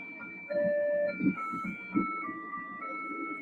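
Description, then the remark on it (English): A Japanese pedestrian crossing signal plays a simple electronic melody of sustained, pure beeping tones stepping between pitches, moderately loud over a low rumble of street noise, with no one speaking. “In some countries, traffic lights have a sound signal. It's intended for visually impaired people, but only in Japan, traffic lights can sing.”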